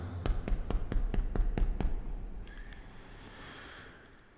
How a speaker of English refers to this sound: So I knew where Travis lived and I went to his house. Knock on his door.